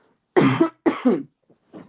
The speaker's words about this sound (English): Sorry, I have a cough. I'm going to cough really quick.